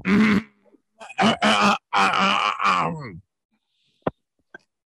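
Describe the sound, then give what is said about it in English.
A voice imitates a cackling cough with a few harsh, throaty voiced bursts in quick succession, loud, followed by two faint clicks. “You cackled. It was one type of cough.”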